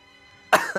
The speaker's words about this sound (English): Enjoy the sound of that cough, Buglers. That is going to be accompanying you for the next 50 years of this podcast.